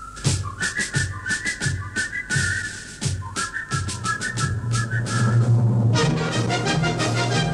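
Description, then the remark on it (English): A man whistles a bright, marching melody over steady drum beats and backing music, which swells into a fuller orchestral passage toward the end, like the old Army Reserve ads with the 1812 Overture and a man whistling in a field. No one speaks. “Do you remember those old Army Reserve ads with the 1812 overture, the guy whistling in the field?”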